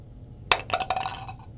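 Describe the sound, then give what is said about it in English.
A d20 die is rolled across a table and lands on a 3: a sharp first knock followed by a quick run of bright, hard clicks and taps that settle after about a second. No one speaks. “Hang on, I've got another d20 here. I'll roll that.”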